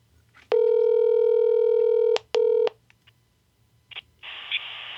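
A loud electronic telephone tone, as a phone call is placed to a family member, holds for over a second, then a shorter beep follows, before a click and a steady burst of line hiss; nobody speaks.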